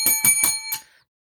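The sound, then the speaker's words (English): A bicycle bell rings four times in quick succession, bright, with a metallic ring that fades out after the last strike. No talking. “Well, I'm probably going to ring a bell.”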